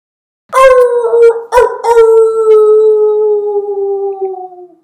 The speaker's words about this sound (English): Well, really the wolves were just out right there. The wolves were out.